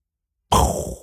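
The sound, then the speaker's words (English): After a half-second of silence, a voice abruptly bursts into a loud, breathy, noisy blast, imitating a brain explosion, then holds briefly and tapers off as it fades. “That was me doing a brain explosion.”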